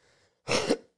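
A single loud sneeze, an abrupt explosive burst of noise lasting under half a second and preceded by a faint, brief breathy intake.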